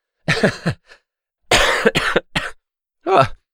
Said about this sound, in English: Anyway, it was a slight laugh and then it became a cough.